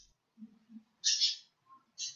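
Someone's pet birds calling in two short, bright bursts of high chirping, about a second apart, clear, with faint low murmurs in the gaps.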